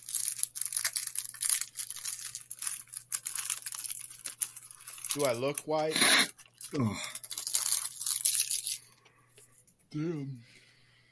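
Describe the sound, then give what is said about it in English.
Loud, crackly crunching of snacks being chewed in rapid, irregular bursts, with a man speaking briefly and a short groan cutting in near the end. “Snarfing it down, bro.”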